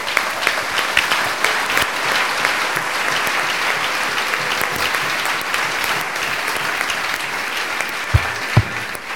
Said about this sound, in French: Applaudissons pour eux. Clap for them.